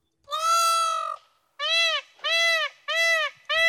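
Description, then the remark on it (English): A peacock's loud, piercing wail rings out: one long drawn-out cry followed by four shorter, evenly spaced calls in quick succession, with no talking. “Is it the Revenge of the Peacock?”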